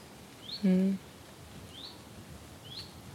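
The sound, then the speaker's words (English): A lone bird gives three short, thin rising chirps, spaced roughly a second apart and fairly faint against quiet outdoor background, with a brief low voiced hum near the start. “Just the one thing calling, isn't it?”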